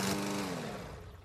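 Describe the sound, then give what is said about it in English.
A lawn mower engine drones steadily as a man mows the lawn in hot weather, a rough buzzing hum with a low tone that dips slightly and eases a little in loudness. No one speaks. “This one is also better because you can hear her yelling in the background two times before he hears her over the mower.”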